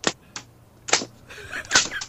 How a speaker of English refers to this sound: There you go. All right. Three whip cracks.